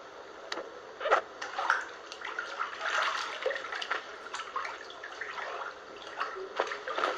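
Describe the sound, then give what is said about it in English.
Bath water sloshes and splashes as a girl takes a bath, with soft irregular swishes and a few sharper drips and splashes over several seconds, and no one speaking. “Girl taking a bath, has a cell phone next to her.”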